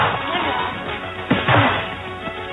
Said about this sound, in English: I love these punching noises. It sounds like I played Mike Tyson Punch Out. This movie's been punched out.